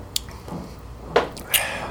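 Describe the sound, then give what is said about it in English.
Several men chugging beer from bottles: a few short, wet gulps and swallows, spaced irregularly and fairly quiet, with no one talking. “Chug the beer, chug the beer until you hear the dog bark.”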